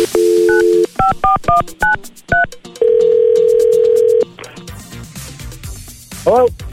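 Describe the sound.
A telephone dial tone hums briefly, then a quick series of touch-tone beeps as the Rick and Carly in the Morning show dials a number to call a listener's husband, followed by a long steady tone and some muffled line noise and brief talk.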